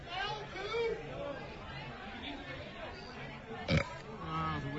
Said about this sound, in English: Now, how we're gauging this is you're going to belch into Corolla's face, and he will guess who smells the worst when they belch.